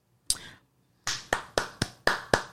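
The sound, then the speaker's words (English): A single person claps for herself: one sharp clap, a short pause, then a quick irregular run of about six more crisp, bright claps, loud and alone with no talking. “I'm clapping for myself because I'm getting a handle on this shit day by day, step by motherfucking step.”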